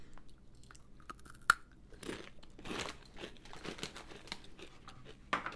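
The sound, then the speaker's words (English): Crunchy chewing of Takis tortilla chips, a sharp bite snap followed by several seconds of irregular, crackly crunches with no talking. “Get that ASMR, get that good crunch.”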